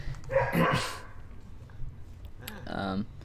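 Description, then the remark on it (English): Dogs bark in two short, loud bursts, a cluster of yips early on and then another round of barks a couple of seconds later, over a low steady hum. “Yeah, now my dogs are here.”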